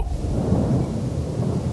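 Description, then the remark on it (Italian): A deep, sustained rumble of thunder from a thunderstorm in progress over a home rolls steadily through, dense low-end energy with a faint wash of rain-like hiss above it, fairly loud and continuous with no talking. “un tuono che arrivava dalla testa della Prudenzi, perché c'è un temporale in corso a casa sua”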